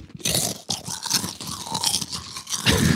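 Loud, continuous crunching of habanero chips being chewed, with dense crackling bursts repeating in an uneven rhythm for the full three seconds and no talking over it.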